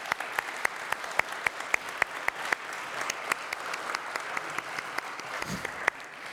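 A church audience applauds steadily, with a child joining in, many hands clapping in a dense wash with a few sharp, louder claps standing out at a fairly regular beat throughout.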